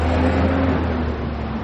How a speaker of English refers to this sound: There are some concerns about the park, especially about the fact that it is literally right on the street, and there are a lot of cars, buses, and trucks going by.